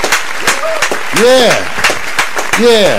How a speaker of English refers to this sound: Everybody, that's, I would give, let me give you some applause. That's our guest, Reginald C. Dorsey.